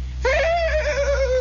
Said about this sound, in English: The sound of a neighing horse.